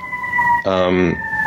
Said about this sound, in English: Excuse the Chicago. The sirens of Chicago.